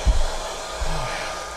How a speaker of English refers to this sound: Well, that's nice. He's got some relief, finally. Yes, sure sounds like it. Yeah, he enjoyed that hairdryer.